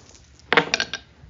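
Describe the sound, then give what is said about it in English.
Dice clatter across a hard tabletop in a quick burst of three or four sharp clicks, fairly loud, fading after about half a second, as they are rolled for a body plus move test in a game. “Body plus move is what you're rolling there? We've stolen all the dice from her.”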